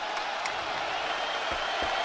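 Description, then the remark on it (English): A basketball arena crowd at a Kentucky Wildcats game, tied at 70 near the four-minute mark, is on its feet and cheers in a steady, loud roar that fills the whole stretch, with a couple of dull low thumps near the end and no clear talking. “This crowd's on its feet.”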